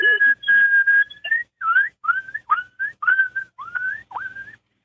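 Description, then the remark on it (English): An imitated elk bugle call, made by a caller in the ice and snow of Missouri: a high, whistle-like tone held for over a second, followed by a run of about seven short rising squeals separated by brief pauses, with no talking. “I could hear you were getting a little excited there, and you got everybody else excited on calling techniques”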